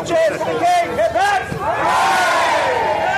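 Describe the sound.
A loud crowd of mourners cheers and shouts, with rising and falling whoops and calls layered over a dense, continuous roar of voices. They are cheering King Charles as he arrives to shake hands with people in the miles-long line waiting in the cold to pay respects to Queen Elizabeth in Britain's Parliament building.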